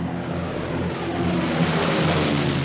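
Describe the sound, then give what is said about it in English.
A propeller airplane drones steadily overhead, its engine a continuous low, harmonic hum with a broad rushing wash, holding loud and even throughout with no voices; an airplane dropping plague-infected fleas on communities, as in Japanese attacks of 1940 to 1942. “Airplanes dropped the small plague-infected creatures on helpless communities.”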